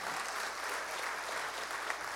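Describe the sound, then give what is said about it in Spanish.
An audience applauds God in a dense, steady wash of clapping that holds at an even level throughout, with no voices rising above it. “Denle un fuerte aplauso a Dios en este día.”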